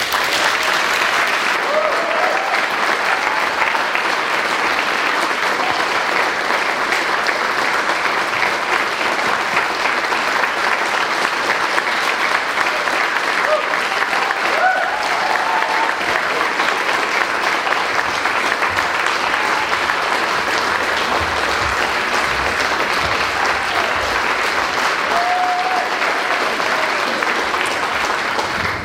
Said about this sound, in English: And so I would love for you to give him a round of applause.